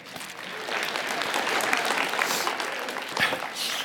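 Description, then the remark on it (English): A crowd claps steadily for a few seconds, a dense, even patter of many hands at moderate loudness, with no voices over it. “Every time I take a drink, you clap.”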